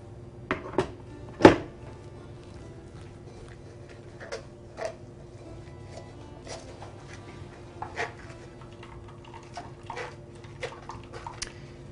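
A liquid mixture is poured through a strainer in a steady stream and trickle, and the moisture is pressed out, with occasional sharp clinks and soft thuds from utensils and containers. No one speaks.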